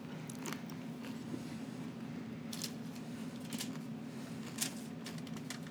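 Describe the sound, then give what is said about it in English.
Dry crunching of biscuits being bitten and chewed during a snack taste comparison, with sharp irregular crackles every second or so over a low steady hum, no talking. “Sorry for the crunches, everybody.”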